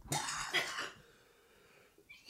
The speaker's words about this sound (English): See, that's my cough.